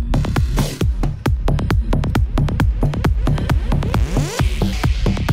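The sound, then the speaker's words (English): Loud, pounding choral music with heavy rhythmic hits in a very fast, ravey mixed set, while a pop song brought in about 50 seconds in drifts in underneath, echoey, the two pieces layered together without any talking. “So you can hear … there in the background, echoing her way in.”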